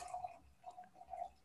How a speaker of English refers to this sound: And I'm pouring another glass of wine.